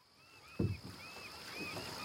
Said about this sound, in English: The morning sun is just cresting over New York City as four oarsmen row out on the Hudson River.